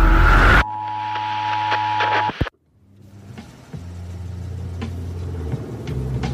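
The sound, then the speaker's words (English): After a burst of noise and a steady electronic hum that cuts out abruptly as the power goes out, a police car's low engine drone rises and rolls past, with no siren and no talking. “It's a cop car.”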